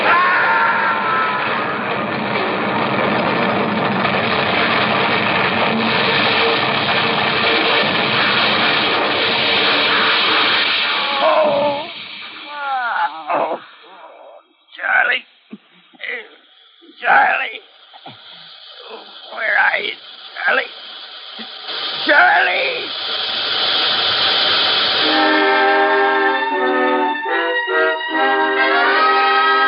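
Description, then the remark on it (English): A train on a curve hits something on the track, crashing with a loud, sustained roar of grinding noise for several seconds, then breaks off into scattered shouts and yells, and music rises near the end. “Sheriff Wagner of Ravenna was notified of the wreck.”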